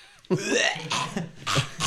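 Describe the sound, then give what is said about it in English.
A voice imitates coughing up a bloody fur ball: a wet, gurgling throat-clearing rasp followed by two harsh coughing bursts, fairly loud, with no words spoken. “There's that ASMR. A fur ball. Yeah, a bloody fur ball.”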